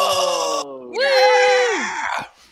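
A voice imitates a crowd going crazy: two drawn-out, breathy cheering cries, the second rising, holding, then sliding down before cutting off. It's fairly loud, with no other talk.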